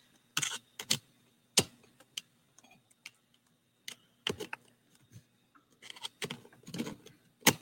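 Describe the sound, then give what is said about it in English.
Handling noise from equipment being fiddled with while switching to a headset: irregular sharp clicks, taps and light rattles scattered over several seconds, with brief quiet gaps and no one talking. “I am going to switch to my headset.”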